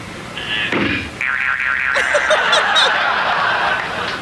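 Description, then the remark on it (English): A cartoon boing spring effect wobbles loudly with a rapid warbling vibrato, preceded by a short thump, then settles into a sustained twanging resonance under faint chattering. “That's a springing sound.”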